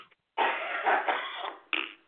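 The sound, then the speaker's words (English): A harsh, raspy coughing fit, a rough drawn-out hack followed by one more sharp cough after a brief pause. “This isn't even my typical cough.”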